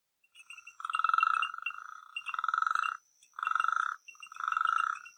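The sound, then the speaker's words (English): Frogs and crickets calling in a dense night chorus outside a tent at a campsite in Jinja, Uganda, with four loud bursts of rapid, rattling croaks over a steady high chirping drone, continuous, with no voices. “Now, that sounds like a bunch of drunk plumbers banging on pipes, but it's actually frogs and crickets.”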